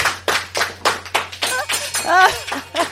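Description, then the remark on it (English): Steady clapping with a quick even rhythm throughout, while a voice or two whoops and cheers over it partway through; a low electrical hum sits underneath. “Can I get a clap for that one?”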